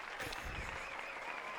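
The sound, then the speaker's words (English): A live audience breaks into sustained applause and cheering in reaction to a performer's physical-comedy pratfall, a dense wash of clapping with excited voices mixed in, steady and fairly loud throughout the short stretch. “It's hard to describe on mic, but he just did kind of a pratfall thing, and the whole, you know, the crowd and myself went nuts for it.”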